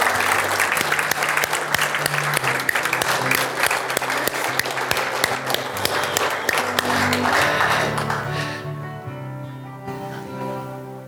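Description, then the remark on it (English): An audience claps and cheers for the mothers in a dense, steady burst of applause, with occasional shouts, before it fades and a low sustained musical tone carries on underneath. “Let's give mothers a cheer this morning, shall we?”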